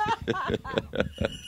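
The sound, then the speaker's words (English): A voice imitates a donkey's hee-haw bray in a quick, rhythmic string of about six syllables, fairly loud, with a sing-song, musical quality. “Hee-haw, hee-haw. It's ….”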